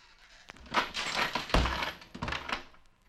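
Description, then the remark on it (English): A heavy trap door slams shut with a deep, booming thud amid a burst of rattling and clattering, followed by a second thump and fading jangles, loud with no talking. “Forgot to close the trap door.”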